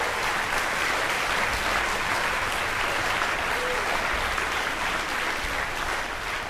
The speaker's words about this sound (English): You know, clapping is for chumps. Snap your fingers the next time you're happy.